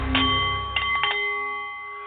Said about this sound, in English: The Nepalese meditation bowl is chiming, centering your mind and delight on the art of the CEO